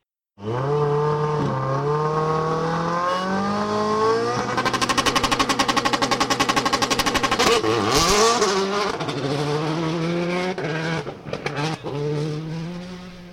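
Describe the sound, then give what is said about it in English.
Craig Breen's Metro 6R4 rally car engine roars continuously as it goes around the track at Castlecombe on a sunny Saturday rally day, its pitch climbing and dropping repeatedly through gear changes, with a harsh, rasping burst of hard revving midway. Loud throughout, with no voices. “It's a beautiful Saturday, it's sunny, and I've come to Castlecombe to rally day, bumping into a few legends, and the first one is Craig Breen, who's over here with his Metro 6R4 for a little bit of an afternoon out and a bit of a go around the track”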